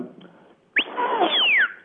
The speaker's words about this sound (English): So it's a high-low type of whistle.